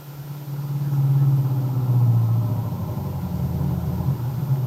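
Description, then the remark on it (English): A car engine hums steadily at a low pitch, a continuous rumble that rises slightly then settles, as the car drives along a road with its headlights on. No voices over it. “And then his thoughts were interrupted as the headlights of his car picked up the figure of a young man plodding along the road.”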